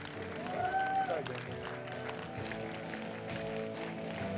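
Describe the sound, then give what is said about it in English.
A church audience cheers and claps as people come forward in response to an invitation: a steady, dense wash of crowd noise lasting the whole stretch, with a brief rising whoop near the start over a background of music. “Let's cheer, church.”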